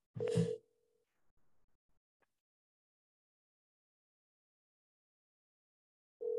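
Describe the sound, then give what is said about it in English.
A phone's dialing tone as a call is placed to a friend: a clicky burst opens into a steady beep that cuts off, a few faint clicks follow, then after a long silence the tone returns at the end. “I'm about to call my boy Kyle because he was there at the mailroom job with me”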